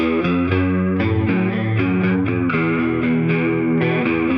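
An electric guitar plays through a Fender amp, with an equalizer cutting some highs and lows and a bit of room reverb, bright, effects-laden chords changing in a steady rhythm, loud, with no one talking.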